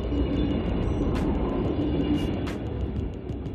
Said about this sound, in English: We got this loud-ass train coming, so get ready for the sound. Get ready.